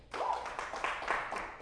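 A short burst of audience applause, many hands clapping together in a dense, steady patter that swells slightly and holds for over a second, at a moderate level with no one speaking.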